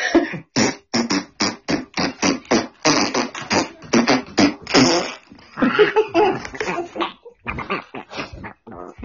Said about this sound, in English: I want to see if I could just get the fart part and keep it as a fucking sound.